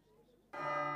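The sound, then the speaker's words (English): A single loud strike of the closing bell by John Farr after a brief quiet moment, its bright metallic tone ringing on steadily with rich overtones rather than fading quickly. “John Farr strikes the closing bell, and the heads of the six families and Father Coram retire to the parley room.”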